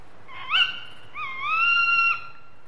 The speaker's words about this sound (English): We've decided to do tawny owls for this episode because actually, you know, this time of year is quite a good time of year to hear them. I mean, I hear my tawny owls here.